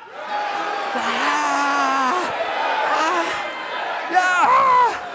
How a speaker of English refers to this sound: All right, everybody stand up. I'm going to count to three, and we're going to have ourselves a little riot. And I want to see, let's see how loud we can riot, okay? Okay, no chairs to the windows or anything. Ready? One, two, three.